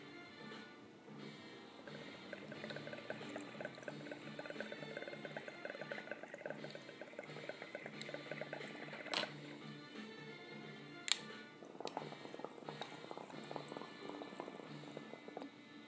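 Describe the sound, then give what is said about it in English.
A water pipe bubbles in a steady, rapid gurgling patter as someone takes a low-temperature dab of diamond and terp, running without a break, with a couple of sharp clicks partway through and no talking. “Get this little fucking dab right here, and we're ready to work.”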